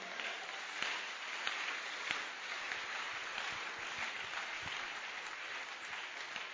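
A church audience claps steadily for the Lord during a service, dense overlapping handclaps at a moderate, even level for several seconds, with no voices standing out.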